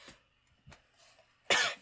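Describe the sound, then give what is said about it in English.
A voice acts out a woman's ragged coughing and gasping for air: two short coughs, a faint wheezy breath, then one loud, harsh cough at the end. No words are spoken. “She's coughing, gasping for air.”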